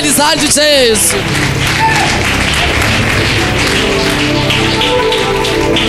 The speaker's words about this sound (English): Or you can clap for Jesus.